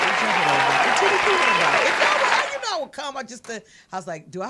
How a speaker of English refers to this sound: Yeah, one job. Push your button to clap.